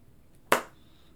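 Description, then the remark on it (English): A single sharp hand clap, loud and crisp, with a brief ringing tail that fades quickly into quiet background hiss. No one speaks. “Clapping is bad.”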